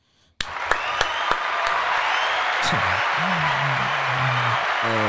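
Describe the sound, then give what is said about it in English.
Applause bursts in abruptly and keeps up as a dense, steady wash of clapping for several seconds, with a voice calling out over it toward the end. “That's that deserves an applause.”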